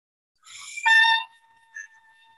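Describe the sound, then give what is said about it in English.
A short, nasal buzz blown hard through a brass mouthpiece with a formed embouchure, rising into a loud, bright tone with stacked harmonics, then a brief faint blip and a thin lingering hum, like a quacking duck call. “Right, so now we've got a nice, funky, weird sounding, almost like a duck call, but not quite as low.”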